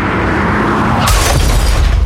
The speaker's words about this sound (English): Ace hits the gas and flies out of the parking lot, bashing into at least 5 cars in the process.